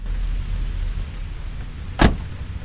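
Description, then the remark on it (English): Heavy rain pours in a steady, dense hiss over a low rumble around a car stuck in the downpour, with one sharp thump standing out near the end. “Just then, two lights appear straight ahead, and the sound of an old engine rises in the middle of the downpour.”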